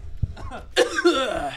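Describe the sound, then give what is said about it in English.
A sharp, sputtering cough bursts out after a soft thump, followed by raspy throat-clearing and strained, gasping vocal noises as someone recovers from nearly choking on a drink they downed in two swallows. “I almost fucking aspirated that shit.”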